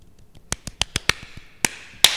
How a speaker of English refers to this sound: Golf clap. Oh, yeah.